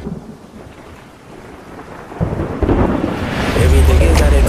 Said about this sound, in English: As the winds are picking up and the storm is just making landfall, everybody sit tight as this is something we may not have seen before.